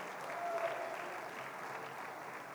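Steady audience applause fills the space, a dense wash of many hands clapping at once, sustained at an even level throughout without any voices standing out.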